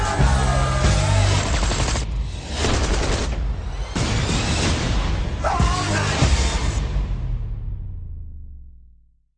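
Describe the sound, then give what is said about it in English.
Loud, dense action-trailer soundtrack for the film The Expendables 3, packed with bursts of rapid gunfire and booming impacts, cut into several abrupt sections over driving music, with brief voices buried in the mix before it fades out at the end. “Okay, you heard of the trailer there for The Expendables 3.”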